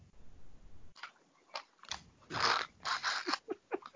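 sipping

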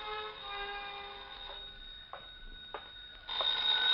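telephone ringing

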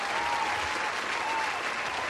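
applause sound effect

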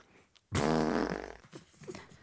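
fart sound effect

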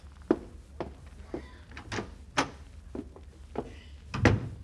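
door opening and closing

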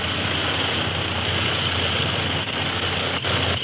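airplane engine droning

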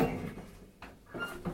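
elevator doors sliding open

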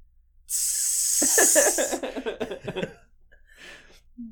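spray paint can spraying

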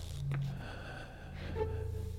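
gasping breath

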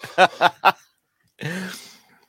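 man coughing

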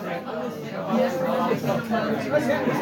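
crowd chatter

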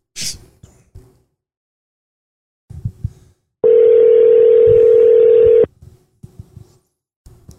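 phone call ringing tone

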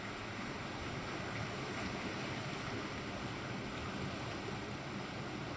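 ocean waves

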